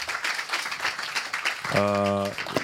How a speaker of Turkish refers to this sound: Önce bir senin için alkış alalım.